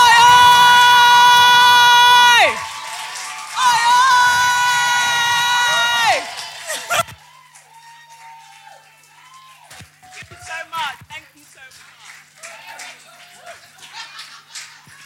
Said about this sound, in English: Hello? You're there clapping.